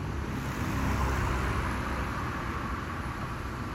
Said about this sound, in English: So picture with me right now, the corner of Lake in Lindale. You're standing there on the corner. Cars are going by. It's loud. Buses.